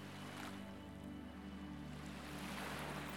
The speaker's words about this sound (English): Now, we are going to try a visualisation technique and visualise some gentle waves.